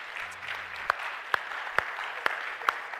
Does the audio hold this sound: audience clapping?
yes